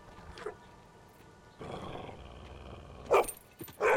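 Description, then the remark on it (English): A pit bull dog growls low and rough, rising into short snarling bursts near the end, fairly loud with no one talking. “He loves his pit bulls so much he even shares the screen with one.”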